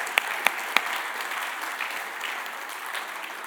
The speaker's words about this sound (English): Let's give them a round of applause one more time.